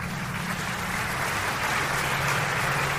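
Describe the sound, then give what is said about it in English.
A steady wash of crowd applause, many hands clapping at once in a dense, continuous patter that holds at an even, fairly loud level throughout with no voices breaking through. “Where the hell's that clapping coming from?”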